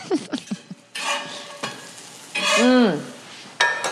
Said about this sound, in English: It's not even on the pan anymore. It's still sizzling.